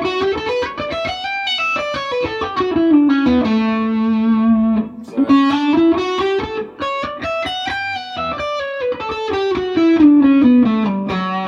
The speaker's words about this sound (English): And then possibly do hammer-ons and pull-offs without thinking maybe to turn it around, you know.